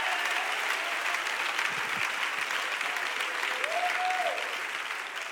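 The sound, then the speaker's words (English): An audience claps their hands in a dense, steady wash of applause that stays loud and continuous throughout, with a faint tonal line rising briefly through the noise. “Clap your hands and say, I'm going to have the audacity to ask.”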